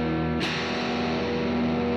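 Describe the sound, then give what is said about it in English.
Echo on a live audio feed from Santa Cruz, California, during a microphone check: a steady, ringing electronic drone of layered tones with a short noisy burst near the start, the smeared sound holding evenly throughout with no one talking. “Getting some echo there.”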